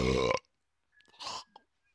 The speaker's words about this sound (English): Oh, I'm going to burp.